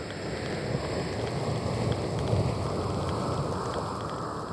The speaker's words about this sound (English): So you'll hear that open up the song along with over the top of five layers of different like vinyl static samples and things of that nature.